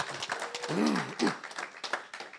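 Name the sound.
round of applause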